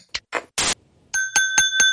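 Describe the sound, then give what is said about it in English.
A fork taps a glass four times in a parking lot to call for attention before a speech, in quick, steady succession, each strike ringing with a bright, high, sustained tone. A few short rustling bursts come before the tapping, and no one speaks. “Did you bring a fork and a glass just for that?”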